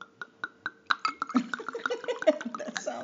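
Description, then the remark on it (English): An Errázuriz wine from the Aconcagua valley pours into a glass: a few evenly spaced soft clicks, then a steady run of bubbly glugs and gurgles with a faintly rising pitch as the glass fills. “So I'm going to give you a little pour.”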